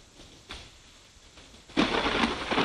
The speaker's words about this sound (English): That's my thunderstorm.